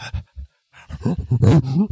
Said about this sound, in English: I'm sure he just made dog noises. There's definitely a waveform.